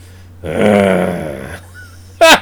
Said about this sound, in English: The man growls. The man fucking growls.